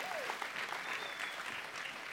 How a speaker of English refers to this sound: So y'all give God a big hand clap of praise for the amazing work he's done in that.